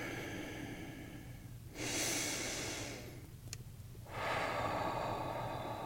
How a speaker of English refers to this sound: Deep breathing is always wonderful with stretching. Just gently moving, noticing any tension you might feel. Breathing into any tension you might feel.